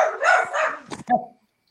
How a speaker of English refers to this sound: Can you get the dogs to shut up?